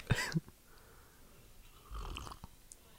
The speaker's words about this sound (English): Yeah, get that tea slurp next to the mic and prove further that you're not a pussy.